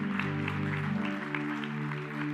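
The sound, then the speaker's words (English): A church audience claps steadily throughout, a dense patter of many hands, with a sustained musical tone humming underneath. “Now you can clap if you want to.”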